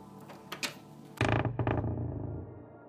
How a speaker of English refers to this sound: I leave it another couple of beats before I swing the door open, just to be safe.